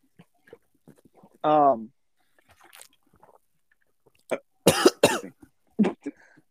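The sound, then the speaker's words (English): A cat coughs in a cluster of short, harsh, rasping bursts, after an earlier brief tonal vocal sound. Quiet pauses fill the gaps, and no one speaks. “What the fuck, cat? Did my what? Cat do... Oh, never mind. What are you doing, like, animal? I was like, I what just coughed.”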